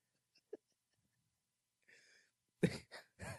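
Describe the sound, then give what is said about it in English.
A quick breathy inhale, then three loud, harsh coughs in rapid succession, with no talking. “Yeah, cough like you mean it, bitch.”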